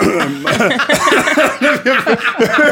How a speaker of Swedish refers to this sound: Det kom jävligt fel alltså. Den där hosten.